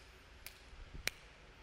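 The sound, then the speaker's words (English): Two crisp finger snaps about half a second apart, the second sharper and louder than the first, over a faint low background hum with no talking. “I always like to snap my fingers.”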